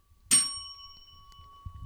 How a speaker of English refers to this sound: You just got to hit the bell, and then that's where we start.